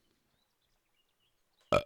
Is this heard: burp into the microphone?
yes